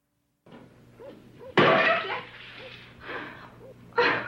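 An old phonograph record smashes in one loud, sharp crash with a brief crackling tail, surrounded by softer whining sounds and a few scattered thumps before and after.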